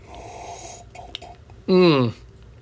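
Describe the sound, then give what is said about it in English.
A soft, airy slurp of someone sipping the last of their vintage roast coffee, followed by a short pause and then a loud, satisfied voiced exhale with a rising pitch. “That's not good. That was my last sip.”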